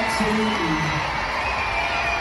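A loud, dense concert crowd roars and cheers continuously during a song, with a few high whooping voices and screeching shrieks rising above the wash of noise, sustained throughout.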